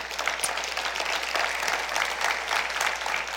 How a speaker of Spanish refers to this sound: ¿Podemos darle un fuerte aplauso a Él?